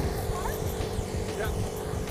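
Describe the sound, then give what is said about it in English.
A scooter's small engine drones steadily, its low buzzing rumble holding constant amid the wash of traffic noise throughout. “There's a scooter ahead of me using the lane as well.”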